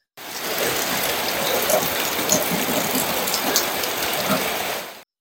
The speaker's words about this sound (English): We have little clips for you to show you how loud this monsoon rain can be.